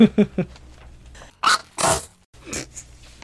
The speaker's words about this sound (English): I knew I was gonna sneeze. I felt it. I felt it earlier.